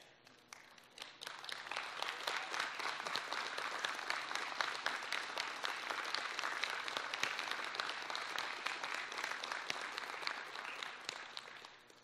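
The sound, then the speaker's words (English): A crowd at a graduation applauds the graduates' family members and guests, steadily for about eleven seconds, a dense wash of many hands clapping that swells quickly at the start, holds at a strong level, and tapers off at the end. “So if you're a family member or a guest of one of these graduates, would you please stand so they can thank you for your support?”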